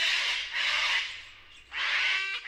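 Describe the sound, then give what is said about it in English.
A sulfur-crested cockatoo squawks three times in quick succession, loud harsh raspy screeches, the first two running together and the third after a brief pause, with no voices. “sulfur-crested cockatoos have learned ways to open trash bins and grab some leftover food”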